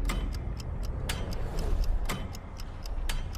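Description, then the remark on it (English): A clock's second hand ticks in a steady, even rhythm, each sharp little click standing out above a low, constant background rumble. No voices, just the repeated ticks. “So it's a clock. It's ticking.”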